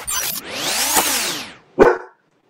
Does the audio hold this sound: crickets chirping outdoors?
no